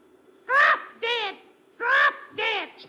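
A parrot named Polly, from Perez's pet shop, squawks four times in the radio drama Dangerous Assignment, loud harsh calls grouped in two quick pairs with a short pause between them, and no talking around them.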